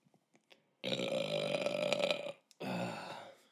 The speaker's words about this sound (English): That was a nice burp. That was nice.